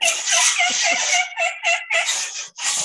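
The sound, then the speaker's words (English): A blown mouth crow call imitating a crow's caws, used to make a turkey gobble, sounded as a string of loud, harsh, raspy bursts with short breaks between calls and no talking. “I've been working on my mouth call, my crow call.”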